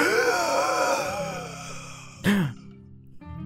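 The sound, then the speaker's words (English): A voice acts out a sudden gasp: a drawn-out breathy, moaning exhale gives way to one sharp, loud intake of breath, then quiet. Alone, no speech. “suddenly the real body gasps like.”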